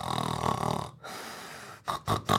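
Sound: voice imitating snoring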